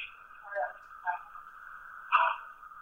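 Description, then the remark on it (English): A garbled, tinny voice of a caller ordering pizza over a bad phone line, with a few short distorted bursts of unintelligible speech over a steady buzzing tone, thin and muffled throughout. “You might be some problems with the phone. Sorry, I'm just having trouble understanding what you're saying.”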